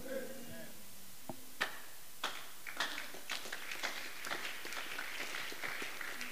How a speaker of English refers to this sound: The one that is not clapping is not in the church yet. It's yet to enter.